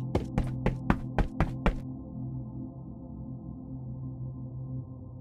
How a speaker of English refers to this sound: Then you hear footsteps in that beyond that door. It's like somebody's running.